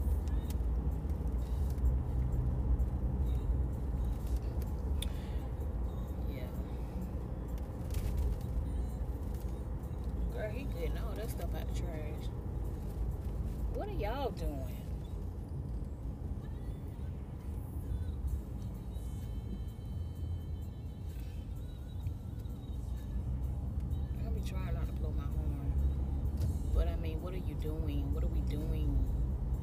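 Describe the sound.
A car rumbles steadily along a rough road, deep low-end road noise filling the whole stretch with occasional jolts and rattles, while people talk inside the cabin over it.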